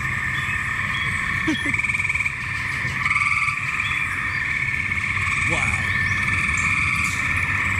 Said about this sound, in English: All right, so this is daytime. Daytime frogs at Moon's house.